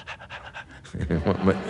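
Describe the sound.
A person pants quickly through an open mouth, about seven short breathy huffs in rapid rhythm, fairly loud, then a voice begins speaking.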